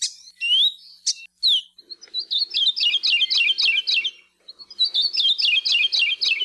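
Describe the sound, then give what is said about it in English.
A Maui parrotbill (kiwikiu), a stoutly built green and yellow bird, sings alone, opening with a few sharp whistled notes, then two quick rhythmic series of bright, slurred chirps repeated in steady phrases, clear. “These stoutly built green and yellow birds rarely sing, but when they do, it's the best way for biologists to detect them.”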